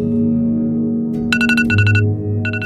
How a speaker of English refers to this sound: The journey began with an alarm beeping on a handset made by Apple, which has a 62% market share in America.